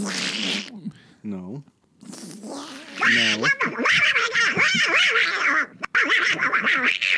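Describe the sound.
A voice does a Donald Duck impression, making raspy, garbled quacking noises in a series of loud bursts, with an early pause and then nearly continuous quacky babble toward the end.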